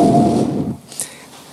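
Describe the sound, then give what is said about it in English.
A gust of wind sound effect, played as a special effect while telling the Bible story of Elijah hearing the wind at the cave: a loud, rumbling rush of air that swells briefly, then drops away after under a second into a faint, airy hiss with a small high tick. “But the Bible says that Elijah, he hears a gust of wind.”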